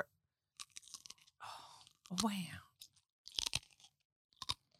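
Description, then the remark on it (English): Crisp crunching of a snack being chewed in several sharp bursts, with a short spoken exclamation in the middle. “Crunchy.”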